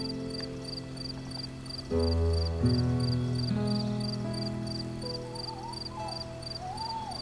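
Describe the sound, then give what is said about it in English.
An owl hoots a few times in low, drawn-out calls from up in an old oak tree, over a steady chorus of chirping crickets, giving a quiet nighttime outdoor atmosphere on a farm in Devon with no one talking. “Do you think he liked the show? What? That old owl?”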